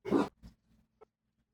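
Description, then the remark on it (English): A dog barks once, loud and sharp, followed by a few fainter, shorter yips or huffs trailing off over the next second, with no one talking. The dogs are the speaker's own pets, barking in the background. “I actually muted myself down a little bit to get rid of the dogs, but since you guys talked about it, that's my dogs.”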